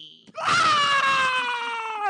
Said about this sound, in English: The first 15 minutes of this podcast is just us screaming.